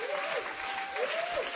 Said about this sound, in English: Are you clapping? Est-ce que vous applaudissez? Are you clapping?